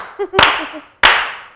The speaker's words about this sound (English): And can we slow clap all the dads?